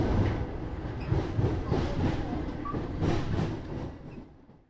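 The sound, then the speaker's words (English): A metro train ride heard from inside the car, heading to Rue Mouffetard in the 5th arrondissement: a steady low rumble with rhythmic clacking of wheels over track joints, fairly loud throughout and fading away at the end. No one speaks. “So let's hop onto the metro and head over to Rue Mouffetard in the 5th arrondissement and find out what this is all about.”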